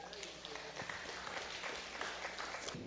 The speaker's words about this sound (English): How about a round of applause to welcome Tiana?